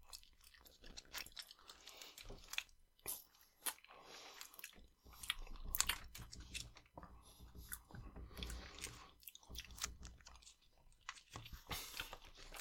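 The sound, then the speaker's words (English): Thick, sticky chewing of a mouthful of peanut butter: wet smacks, squishes and tongue clicks in an uneven rhythm, with brief pauses and no talking. “It's not that it's bad. It's that I can't swallow it.”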